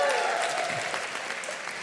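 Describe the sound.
Steady audience applause welcoming a guest onto the stage, a dense patter of many hands clapping at a fairly even level, with a faint voice audible under it at the start.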